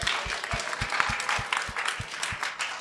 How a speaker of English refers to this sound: Can we give some of you a round of applause, please?